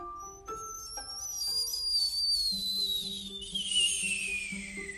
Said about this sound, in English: There was like a whistling, like a screaming sound.